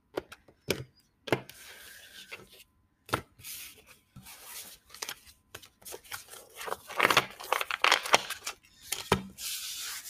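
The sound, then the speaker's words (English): A deck of cards being shuffled, with sharp snaps and soft rubbing slides, then a denser flurry of riffling near the end. No one speaks. “I've been shuffling these cards different.”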